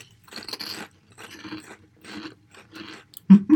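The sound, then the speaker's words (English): Crunching of fried-egg flavored Quilos potato chips being chewed, several rhythmic bursts of crisp crackling with short pauses, ending in a louder sharp crunch. “Down the hatch. I have the crunchy one.”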